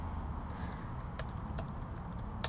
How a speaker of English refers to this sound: What are you typing?